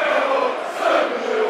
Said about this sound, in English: Crowd in good heart.